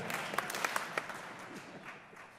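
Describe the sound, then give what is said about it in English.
An audience claps in a brief, scattered burst, a handful of sharp claps over the first second, then the clapping fades into a soft crowd murmur. “Clap twice if you agree.”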